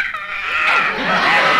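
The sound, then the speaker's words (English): A canary squawks loudly and harshly in one continuous, shrill outburst lasting under two seconds, growing rougher and more warbling toward the end, with no talking. “That bird again. Shut up, you molting pest.”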